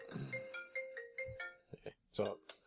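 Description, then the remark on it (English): A phone ringtone plays a bright, repeating electronic melody of short tonal notes, with voices briefly talking over it near the end. “So the BA's still ringing?”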